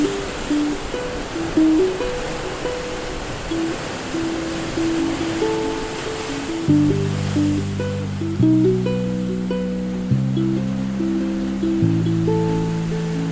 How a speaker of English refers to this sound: Let's sit here and watch the moonlight dancing on the surf.